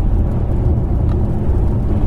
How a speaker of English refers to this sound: Changes down, revs up to 4, then down to 2,000 revs again.